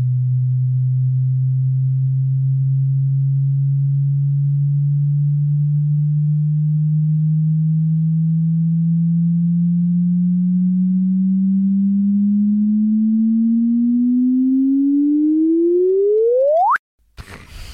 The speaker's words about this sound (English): And I've got a clip of kind of predictions of what a chirp might sound like before they actually found one. These were the early concept chirps. Yeah. Right. This is like a demo chirp. So let's play one of those.